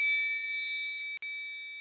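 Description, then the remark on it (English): A bell is struck once and rings on with a steady, high metallic tone that fades only slowly, briefly cutting out near the end. No one speaks. “We're gonna ring that bell for the priestess.”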